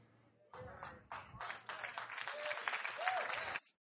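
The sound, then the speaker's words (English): An audience bursts into dense applause that starts abruptly, holds steady and loud for about three seconds, then cuts off, with a few voices calling out amid the clapping. “Why are they clapping?”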